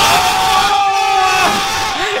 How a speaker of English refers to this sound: You know, those are people cheering the Leafs on down at Maple Leaf Square.